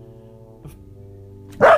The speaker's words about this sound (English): Oh, Lord. Here we go. But, yeah, the dog's always got to make their way known. Yes. Somebody outside. That's enough. We know. They're vicious.